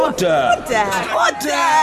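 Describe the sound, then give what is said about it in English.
Members of parliament shout over the Speaker in a loud, continuous din of many voices shouting over one another. Overlapping jeers and calls fill the crowd, with no single speaker standing out. “I think with people shouting, there will be an opportunity for other points of order, but the Prime Minister must and will be heard.”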